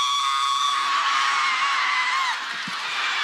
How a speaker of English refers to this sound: I got to scream to be funny ass, boy.